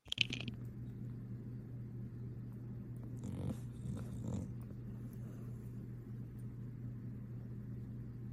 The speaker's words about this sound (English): If a dog snoring doesn't cleanse your soul, I don't know what will. All right, that was the cleanse.